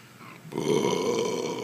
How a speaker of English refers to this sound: Just because I burped in the microphone. People are used to that by now.